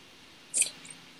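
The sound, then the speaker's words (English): Someone chews food: one short, crisp smacking burst followed by a fainter second one, quiet and with no talking. “What are you eating? Chew that up.”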